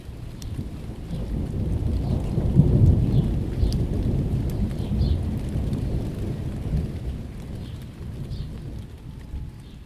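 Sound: monsoon thunderstorm with rain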